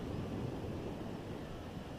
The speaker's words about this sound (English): I think I just heard a little bit of a plane. So you might hear the small drone sound of a plane.